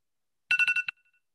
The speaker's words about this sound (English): I just wanted to be dramatic and let it beep.